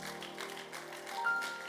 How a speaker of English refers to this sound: Give the Lord a good clap offering in the house.